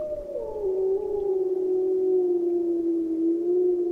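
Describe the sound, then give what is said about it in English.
A long, steady wolf howl holds a mid-pitched tone for several seconds after a brief downward slide, fairly loud and unbroken, with no one speaking. “How do you find each other? Well, you howl.”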